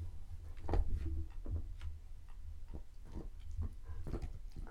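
A pet named Betty gnawing on a wooden door: irregular bursts of scraping, crunching bites, about a dozen over a few seconds, over a steady low rumble, with no talking.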